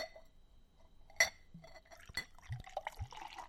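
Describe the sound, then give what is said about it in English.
Beer pours from a bottle into a glass, with a sharp clink early on followed by a few uneven, low glugging gloops as it flows, fairly quiet, with no talking. “Heard a little bit of that gloop going on.”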